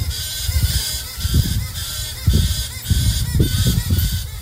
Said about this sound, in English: But the noise, that's a galah. Like one of those pink and grey galahs.